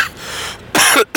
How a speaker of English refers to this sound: I still have a little bit of cough remaining.